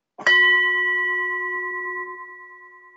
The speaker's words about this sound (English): Now, I have misplaced my kazoo, so for my very expensive side effect, we're going to use my gong.